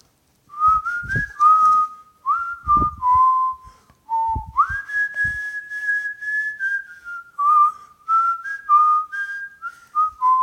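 A person whistles a pop song melody in clear, sustained notes that step up and down in short phrases, close and fairly loud, with faint low thumps underneath and no talking.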